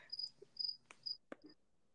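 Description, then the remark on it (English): A cricket chirps in steady, evenly spaced high-pitched trills, fairly quiet, with a couple of soft clicks in between and no one speaking. “Just enjoy this peaceful cricket noise while we talk about this murderer.”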